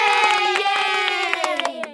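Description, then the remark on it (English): A crowd cheers and whoops with sustained, slightly falling voices while scattered sharp claps punctuate the noise, building to a lively burst of applause lasting about two seconds. “Give yourself a round of applause for prioritizing your recovery today by listening to this episode.”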